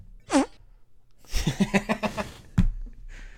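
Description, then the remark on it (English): A voice makes a blubbery raspberry imitating a fart: a short squeaky burst, then a longer sputtering run of rapid pulses and a final low blast, fairly loud. “And he farts in between both phrases.”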